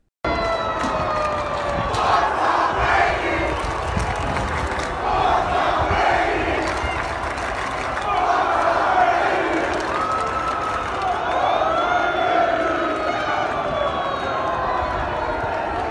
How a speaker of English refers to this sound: that is an amazing clip of just people walking down Broad Street yelling fuck Tom Brady. That's amazing.